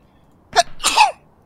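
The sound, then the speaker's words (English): A single sharp sneeze: a quick intake burst followed by a loud, breathy explosive release, heard alone with no talking. “The joke about me failing was because I sneezed.”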